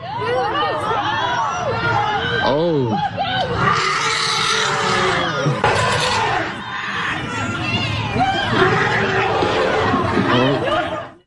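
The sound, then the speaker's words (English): A crowd of people screaming and shouting over one another, a dense, loud chaotic babble with high, wavering shrieks rising throughout, continuing steadily until it cuts off at the end. “Oh my God, I can see how the people would be screaming, because if you thought you were going to see a cute little girl trampled to death by an elephant, oh, that's horrific.”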